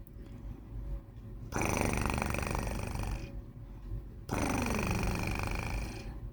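Deep, loud rumbling snores or purrs from a very large cat: two long raspy breaths, each lasting almost two seconds, with a quieter low rumble between them.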